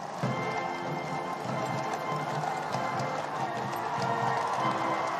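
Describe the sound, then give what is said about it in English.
Steady clip-clop of the hooves of enormous horses in a ceremonial mounted escort and coach procession on a hard surface, a regular rhythm repeating throughout, set against a dense wash of cheering outdoor crowd noise. “See the skill of the drummers. These enormous horses.”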